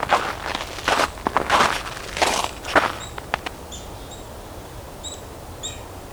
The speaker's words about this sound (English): Mixed flock, chickadees, nuthatches, sounds like blue jays too. That kind of creak in the distance is a blue jay.